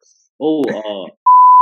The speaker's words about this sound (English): hey, beep that out. I cut that out.